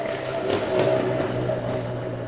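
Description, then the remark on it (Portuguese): A motorcycle engine drones past as the same rider comes by again, its steady buzzing roar swelling slightly early on before holding at an even level, with no one talking. “Ele não para.”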